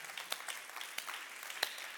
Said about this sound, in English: I love when you clap like that, you know.